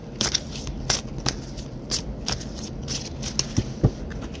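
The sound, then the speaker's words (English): A deck of cards being shuffled for a card reading spread, a steady run of crisp riffling flicks and soft slaps repeating irregularly for several seconds with no one talking. “So I am going to shuffle and pull however spirit tells me to pull.”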